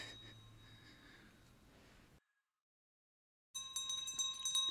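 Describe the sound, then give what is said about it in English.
A bell at a camp rings with sustained metallic tones, fades into a brief silence, then rings again louder and brighter, its overtones shimmering over a faint background hiss. “And that's when the bell rang.”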